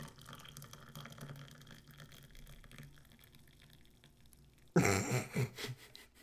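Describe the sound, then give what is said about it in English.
Tea is poured in a short, loud gush of liquid splashing into a cup near the end, lasting about a second and a half after a quiet, low murmuring background. “My Barely. pouring of the tea.”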